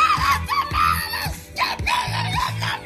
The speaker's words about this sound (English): Now, let's scream the lyrics to say so.